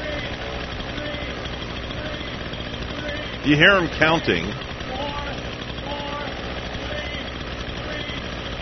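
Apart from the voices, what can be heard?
chainsaw engine running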